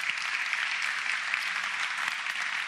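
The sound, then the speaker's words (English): A crowd applauds steadily for a group of men stepping up, many hands clapping together in a dense, even wash of sound that holds at a constant level without breaks or voices. “Can you just give a round of applause, just appreciating these guys as they step up?”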